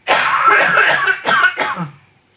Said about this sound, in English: Would you stop coughing